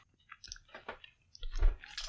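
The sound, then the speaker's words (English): Crunchy chewing of a whole bite popped into the mouth at a whiskey tasting, starting with The Singleton, with a few distinct bites and wet mouth sounds, growing louder toward the end; no talking. “I'm just popping the whole thing in my mouth.”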